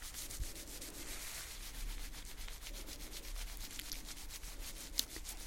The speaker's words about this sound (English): Maybe I can scratch it for you. How does that feel? Good.